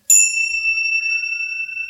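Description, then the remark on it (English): A single chime is struck once with a sharp metallic onset, then rings out in a clear, sustained tone that fades only slightly over two seconds, heard alone. “Palo Santo, all the good stuff, other chimes.”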